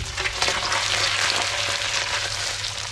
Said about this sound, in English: get some olive oil frying in the pan. Whack your onion in for about 5 minutes.